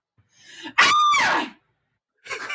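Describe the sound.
A woman screams in imitation of an animal: a breathy rasp leads into a loud, shrill, sustained cry that slides downward in pitch, followed after a pause by a short raspy burst.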